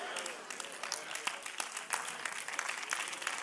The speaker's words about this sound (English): Well, I got three or four people clapping their hands. And the rest of y'all are just looking at me like I'm speaking a foreign language.